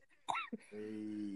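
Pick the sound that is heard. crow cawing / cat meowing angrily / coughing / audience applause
coughing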